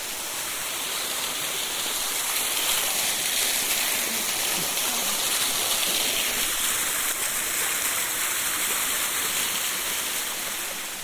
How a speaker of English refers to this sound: Come back into the splashy bit. I'm just going to walk back over to the fountain. Oh, it's so lovely because the drops of water are making concentric circles.